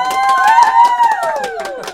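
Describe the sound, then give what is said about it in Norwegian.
Audience applause for a poet about to read a poem, a steady wash of many hands clapping irregularly, with voices cheering and whooping in sliding tones over the top for the full two seconds. “Mine damer og herrer, en stor applaus til dikteren”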